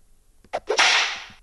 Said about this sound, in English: We're bringing the whip.